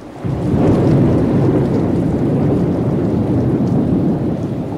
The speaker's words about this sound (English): Environments number four, side one was the ultimate thunderstorm.